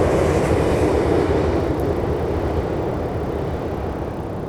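A train rumbles along the rails, a loud, steady roar of wheels and carriages that eases off slightly toward the end as it passes.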